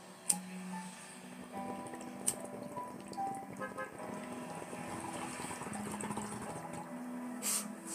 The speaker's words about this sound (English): Okay, so anyway, yes, I'm hitting a bong here while talking about this stuff.